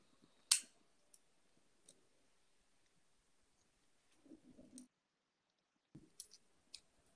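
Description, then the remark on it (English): A purple pair of decorative-edge craft scissors with a Victorian-style edge, the kind used in preschool and kindergarten, clicks as someone plays with it: one sharp snap, a few faint ticks, then two short bursts of rustling snips and clicks separated by quiet gaps, with no talking. “I'm playing with Fancy, those scissors that we use, that are, in preschool and kindergarten, that, have the lines on them”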